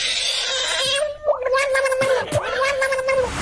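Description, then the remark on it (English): A hissing frog lets out a continuous raspy hiss over a warbling, gurgling tone that wavers in pitch, fairly loud and unbroken for a few seconds, with no talking. “So the hissing frog is like a sort of defence mechanism to protect it in the wild.”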